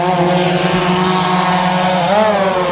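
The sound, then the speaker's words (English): A loud, steady electric buzz from a drone's motors as it flies surveying a water-saturated hillside slide for a 3D model, a layered whine that holds its pitch and then bends briefly upward and back near the end, with no voices. “The drone photos will be married up with GPS computer software to create a 3D model of the hillside.”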